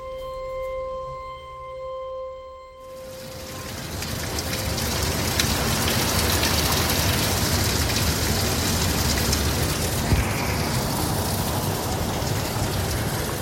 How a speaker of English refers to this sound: It is pouring out.